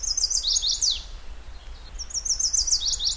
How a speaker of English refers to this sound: Byers has recorded hundreds of these mate attraction songs for each of the 56 male birds in his study.